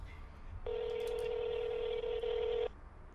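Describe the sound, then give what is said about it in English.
A single steady electronic telephone keypad tone, as someone dials a phone call, holds for about two seconds at an even, fairly loud level, then cuts off abruptly, with faint background noise before and after and no talking. “I'm going to try to call my mom right now.”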